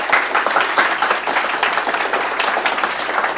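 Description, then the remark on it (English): A crowd applauds steadily, many hands clapping in a dense, even patter that stays at a constant moderate loudness throughout, with no voices standing out. “Can I have a round of applause with you?”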